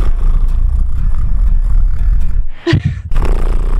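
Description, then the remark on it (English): A voice imitates purring with a loud, low, rapidly pulsing throaty rumble, pauses briefly for a breathy catch, then starts the steady rumbling purr again. “Oh, purring.”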